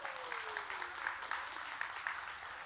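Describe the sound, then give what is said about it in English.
Steady applause from a crowd, a dense wash of many hands clapping at once at moderate volume, with a faint descending tone gliding underneath early on. “Let's go and give him a good hand clap.”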